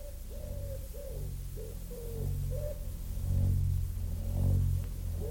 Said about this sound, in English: Only the wood pigeons bubbling with content, and the hum of the threshing machine sounding from the farm.